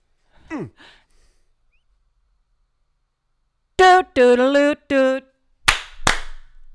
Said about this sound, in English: That's why we practice, people. Oh, yeah. That's why you practice clapping, because when that doot doodle hits, you got to be ready.